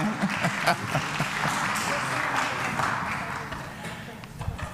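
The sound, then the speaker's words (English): A crowd claps steadily for several seconds, a dense patter of many hands at moderate loudness, with a few louder claps and faint voices mixed in. “can clap if you want to.”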